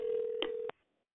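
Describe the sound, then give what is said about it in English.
A steady electronic telephone dialing tone from a phone left unmuted hums for under a second, broken by a couple of sharp clicks, then cuts off abruptly into near silence. No one speaks. “Please put your phone on mute.”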